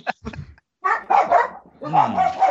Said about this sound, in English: Aster's barking too. What's that? Aster's barking too. Yeah, it's pretty rare, but you know he does it every once in a while.